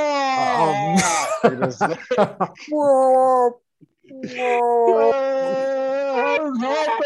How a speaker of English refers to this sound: Mom's just screaming just now. She said death.